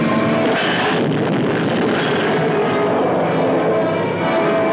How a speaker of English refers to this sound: Suddenly, a plane dives to death.